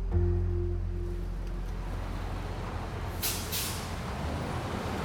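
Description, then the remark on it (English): A school bus engine rumbles low and steady, then two quick, sharp bursts of air-brake hiss cut through as it comes to a stop. “On November 21st, 1983, Linda hops off the bus and rushes home.”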